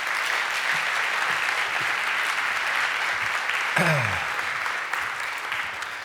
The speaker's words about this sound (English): God bless you. Give Andrew a big clap.